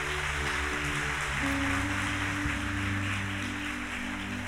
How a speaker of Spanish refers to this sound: dale fuerte el aplauso al Señor, aleluya.